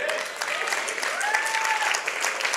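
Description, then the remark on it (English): An audience claps in a dense, steady burst of applause that holds at an even loudness throughout, with a faint wavering tone, like a whistle or voice, gliding above the clapping midway. “Are you clapping for him or are you clapping for yourself?”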